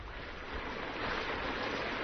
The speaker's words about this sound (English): Not that you can see much with this rain falling.